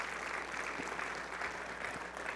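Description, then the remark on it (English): A church audience claps steadily and densely as a praise offering to God during a morning worship service, a sustained wash of many hands applauding together at an even level throughout, with no voices standing out. “I rather than clapping for them, I want you to give a praise offering to God for their service this morning.”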